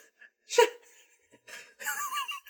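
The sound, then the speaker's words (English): A short, throaty burp bursts out into the mic, followed by quiet breathy huffs and exhalations, with no clear words spoken. “We should never drink anymore during these podcasts because I burp.”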